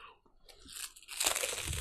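Crisp crunching of a snack being bitten and chewed, starting with a few light crackles and building into a loud, dense burst of crunching.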